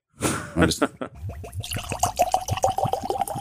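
Whiskey glugs into a glass, a rapid series of gurgling pulses after an initial rush, rising slightly in pitch as it fills.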